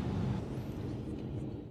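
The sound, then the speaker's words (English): Steady, heavy airplane cabin roar recorded on board a Delta flight from Atlanta to Charlotte circling the airport before an emergency landing with a nose wheel problem; a deep low-pitched rumble and hiss, holding at an even loudness throughout, with no distinct voices or separate events standing out. “Here is that video of someone on board the plane.”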